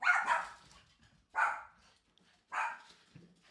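A dog barks three times in a steady rhythm, each bark loud with a short gap between, and no talking underneath.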